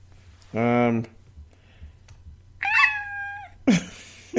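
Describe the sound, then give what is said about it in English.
A person's voice does a cat-like imitation of a police siren: a short wail, a pause, then a longer wavering tone and a final sharp yelp. “I was trying to do the police siren to scare you”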